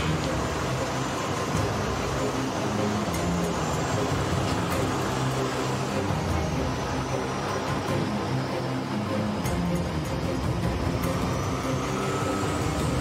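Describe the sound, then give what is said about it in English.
A tank's engine rumbles steadily and loudly throughout a ride at Tank America in North Orlando, a dense low drone with mechanical clatter, heard from on board with no pauses and no one speaking. “My favorite part about this tank is it don't have any brakes. It's like my truck, but quieter.”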